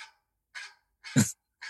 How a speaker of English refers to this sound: And every time the dog barks at the end of 5 minutes, that's when our 5 minutes is up. So just for the listeners' reference point.